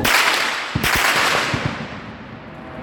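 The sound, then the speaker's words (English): Several sharp gunshots crack out in a street in quick, irregular succession against a loud, hissing outdoor background, with a couple of the reports landing close together. “As they walk, gunshots can be heard.”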